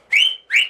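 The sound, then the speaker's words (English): A person imitates a friend's father's loud calling whistle: two sharp, rising whistled notes in quick succession, strong, with a brief gap between them and no talking. “You could hear his whistle for like this.”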